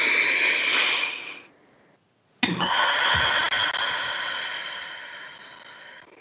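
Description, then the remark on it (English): A deep, airy inhale trails off into a brief silence, then a sudden, forceful exhale begins and stretches out for several seconds, slowly fading, during a guided breathing exercise. No one speaks. “So let's take a moment and breathe. Let's connect through breath.”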